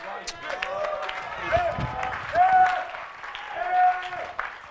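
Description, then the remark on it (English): An audience claps steadily during preaching in a dense, continuous wash, with several voices calling out and shouting over the applause, at a fairly loud level. “This is anointing, quenching, clapping to continue preaching the best I can.”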